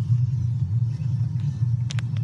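Steady low engine rumble from inside a moving car, recorded by a dash cam, droning continuously and fairly loud, with a few brief sharp clicks or ticks near the end. No one speaks.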